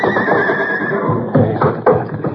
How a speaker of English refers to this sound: Never know about a horse during a fire. Some of them would just stand right in the middle of it and not make a move to save themselves.